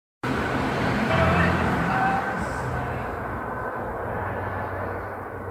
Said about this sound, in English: I mean, to be honest, it almost sounds like a car driving by with the radio playing loud.